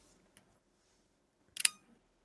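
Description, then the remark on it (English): The leaf shutter of a Contax T compact camera fires once, a quick, soft mechanical click, preceded by a faint small tick amid otherwise quiet. “But my quietest leaf shutter is the Contax T, which I have in front of me right now.”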